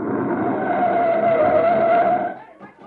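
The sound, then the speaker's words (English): A recon car rushes in on a road with engine roar and a long, high tire squeal as it skids to a stop, loud, then the sound cuts off into near silence. “There's a recon car coming up.”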